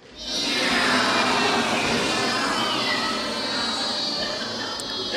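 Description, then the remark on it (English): An audience imitates cats and bees at once, one side meowing and the other buzzing like a bee: a dense, sustained mix of many overlapping meows over a continuous droning buzz, loud and steady for several seconds. “Okay, so all together then, meowing and buzzing together.”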